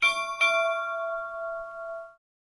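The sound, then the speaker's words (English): A ship's bell clock sound from a premium talking clock chimes twice in quick succession, two close metallic strikes whose bright ringing tone sustains and fades over about two seconds, heard clearly on its own. “Okay, my last two premium clocks are, ship's bell.”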